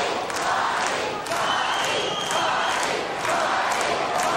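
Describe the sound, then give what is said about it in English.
A large arena crowd at a WWF wrestling match yells and cheers for a wrestler continuously, a dense roar of many voices with surges of louder shouting, steady and loud throughout with no single voice standing out. “Listen to this crowd. Listen to the people yelling for Marty.”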